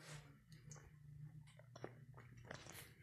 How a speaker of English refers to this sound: Sorry, guys. I'm also drinking water here.